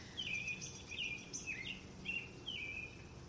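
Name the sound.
bird singing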